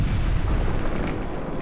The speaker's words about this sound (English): In the early hours of February 10th, 1567, a massive explosion shook the entire city of Edinburgh, Scotland.